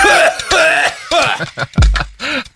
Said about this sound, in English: is coughing up the marijuana he just smoked.